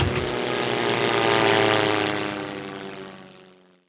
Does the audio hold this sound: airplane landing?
yes